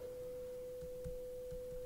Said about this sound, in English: So so this is just a very basic sine wave. And I happen to have it panned.